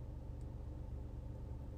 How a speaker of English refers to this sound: I'm sitting in the car with the engine running, so the alarm doesn't go off, because that's happened before when I've done a podcast.